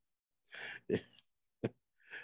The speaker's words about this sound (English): I can't go forth until I blow my nose. Give me one second.